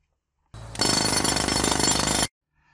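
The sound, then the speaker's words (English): A loud jackhammer rattles in rapid, steady pounding bursts for nearly two seconds, starting with a brief low rumble before the full hammering kicks in, then cutting off abruptly. “Or if it's really bad, you can use a jackhammer.”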